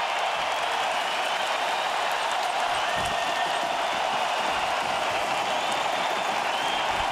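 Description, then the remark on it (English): A large arena crowd at an ice hockey game, on their feet as the Oilers finish a 6-3 win over the Colorado Avalanche, cheers and applauds in a dense, steady roar of clapping and shouting that stays loud and unbroken for about seven seconds, with no clear speech over it. “Listen to the crowd. They are on their feet.”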